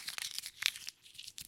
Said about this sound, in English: So what I'm going to do is I'm going to take the post-it note here with Lana's name on it. I'm going to crumple it up.